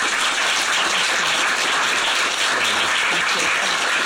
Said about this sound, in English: So, a round of applause, please.